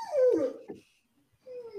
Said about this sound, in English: That's how mastiffs yawn. That's how I yawn. Yeah, but if they're asleep, they're not yawning. Well, they're awake looking at me, but laying down their cages.